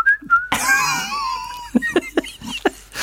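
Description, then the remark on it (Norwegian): A man whistles two short, clear notes, then loud, high-pitched laughter breaks out and trails into a series of rhythmic chuckling bursts. “Han må, han må plystre i hver scene han gjør fremover i resten av sitt liv.”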